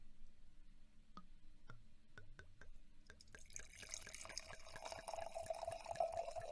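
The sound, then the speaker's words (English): A few sharp drips, then a steady pour of wine into a glass from a just-opened bottle that was opened without a wine opener, fairly loud, with a rhythmic glugging that builds as the glass fills. No one speaks. “Okay, audio listener, I'm going to wine pour in this from this wine bottle that I just opened with no wine opener.”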